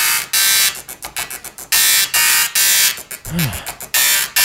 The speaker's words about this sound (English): Well, this is an old printer. An old printer with like the holes in the sides of the paper that feed it forward.